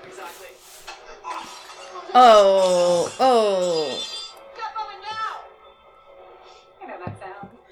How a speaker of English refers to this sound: Oh, the glass breaking sound.